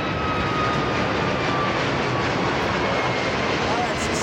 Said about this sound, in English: Oh, here goes the plane.